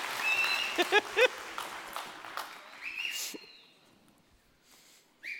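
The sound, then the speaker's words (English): A crowd at the Goshen campus claps and cheers loudly in celebration of people who just shared their story, with sharp whistles cutting through the dense applause, before the noise dies away into near silence after about four seconds. “I would love to give one more a huge celebratory cheer for those people who just shared their story.”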